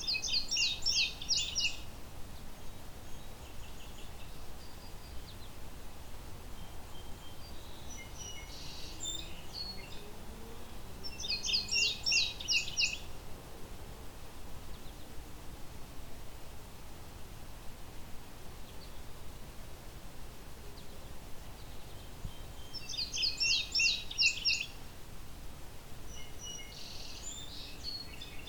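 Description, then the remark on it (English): A male indigo bunting sings from a dead tree right overhead, clear, bright phrases in three separate bursts a few seconds apart, prominent over a steady hiss of insects and outdoor ambience. “Good clear listen to this indigo bunting though. It's right above me on a dead tree.”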